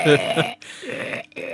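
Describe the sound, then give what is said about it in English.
A loud, drawn-out burp rumbles for over a second, rough and throaty, then trails off with a short voiced sound after a brief pause. “Excuse me while I burp.”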